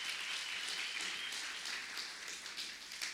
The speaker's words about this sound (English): Can you give the Lord a clap offering this morning? Give it to him hard this morning, amen.